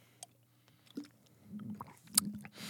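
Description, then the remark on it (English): Someone takes a quiet sip of water, with a few small wet slurps, lip smacks and clicks over a faint low hum, and no talking. “Hold on, let me get another sip of water.”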